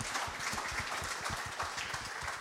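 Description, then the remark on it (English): An audience applauds Ben Siegrist and welcomes Amy Gallacher, a dense wash of many hands clapping at once with a crackling, irregular texture that holds at an even, moderate level throughout, with no voices over it. “Everybody, big round of applause for Ben Siegrist, and welcome in Amy Gallacher.”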